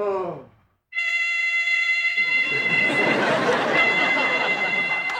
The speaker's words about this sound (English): And just seconds after that, we hear sounds that Sophia was hearing at Shady Pines, a sad little fire alarm.